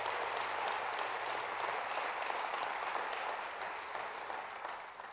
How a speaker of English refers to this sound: Give the Lord a hand clap of praise in this house.